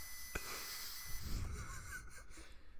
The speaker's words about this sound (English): is now blowing into his breathalyzer.